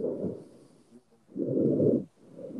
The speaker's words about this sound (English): Also, wait, why are you breathing like that? I'm breathing alone. What are you doing? You sound crazy.